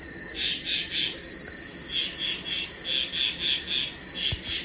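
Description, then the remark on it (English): A steady evening chorus of frogs croaking at a waterhole, high pulsing calls repeating in a regular rhythm over a low, continuous background rumble, with no one talking. “All those frogs and things.”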